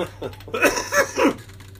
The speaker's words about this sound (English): Sorry, I had to cough as I said okay.